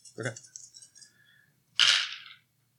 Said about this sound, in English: Yeah. How many dice are you rolling?